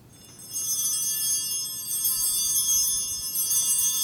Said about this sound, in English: And when after I say that, I'm going to hold up the chalice. And when I hold up the chalice, you're going to ring the bells three times.